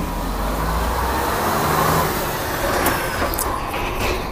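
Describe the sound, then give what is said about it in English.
A heavy truck rumbles past on a busy road while someone waits for a bus, its engine roar steady and loud, with a brief hiss like air brakes near the end and general traffic noise around it. “And wait till this truck pass.”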